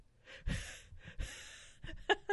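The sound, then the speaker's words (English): Someone imitates desperate gasping for breath, like a beached fish: two harsh, airy gulps, followed by a short strained vocal catch. “I sounded like a beached fish. I was gasping, like...”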